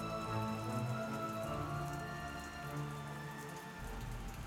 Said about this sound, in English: In the distance is the sound of thunder and rain, just a nice summer storm.